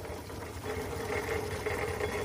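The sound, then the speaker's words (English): A scaled-down model Foden steam wagon chugs steadily around the Museum of Technology in Cambridge, on the site of the old sewage pumping station, a dense rumbling engine churn with a rapid knocking pulse and a faint steady whine, growing slightly louder after the opening moment. No one speaks. “This week, Dave and I are aboard a Foden steam wagon chugging around the Museum of Technology here in Cambridge.”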